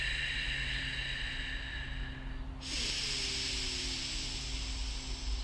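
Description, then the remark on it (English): Steady breathing in through one nostril with the other nostril covered, a continuous airy hiss that shifts to a brighter, sharper rush about halfway through. No one speaks. “So, breathing in, I've got one nostril covering.”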